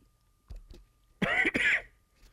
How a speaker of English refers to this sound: I practiced this, but I'm about to cough, and it's really hard to say all the hard words when you're about to cough. Excuse me.